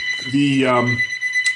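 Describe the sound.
A mobile phone rings with a steady, high electronic tone that holds through the whole moment, while a man's voice briefly speaks over it.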